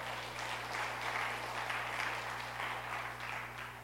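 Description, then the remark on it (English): A crowd claps steadily for a few seconds in response to a statement about putting trust in the Lord Jesus Christ, a dense wash of many hands at an even, moderate loudness, with a low steady hum running underneath and no voices. “Yes, we can clap for that.”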